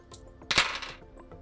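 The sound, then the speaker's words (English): Dice, an action die and two challenge dice, clatter across a hard tabletop during a tabletop role-playing game: a sharp burst of rattling clicks, with a few lighter taps as they tumble and settle. Moderately loud, with no voices. “9 on the action die and a 4 and a 1 on the challenge dice for a strong hit.”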